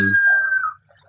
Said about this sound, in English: I think those birds are cool, but I wish you would just shut the fuck up right now.